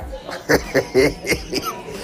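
A string of short, harsh coughs from a woman, about five bursts in a quick uneven rhythm, fairly loud, as food went down the wrong pipe and got stuck in her throat.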